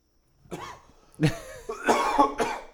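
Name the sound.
coughing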